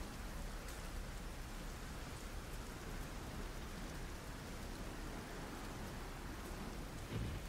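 Heavy rain pounds steadily on a tin roof, a dense, continuous drumming hiss that stays loud and even throughout, with no voices.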